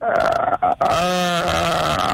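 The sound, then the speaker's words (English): A voice imitates a bear roar: a loud, guttural growl lasting about two seconds, starting raspy and settling into a steady, low, droning tone. “The old dead bear roar.”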